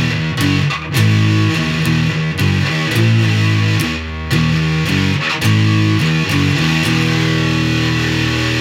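A heavily distorted electric guitar played through a distortion edge setting plays loud, chunky chords and riffs with brief pauses, with no one talking.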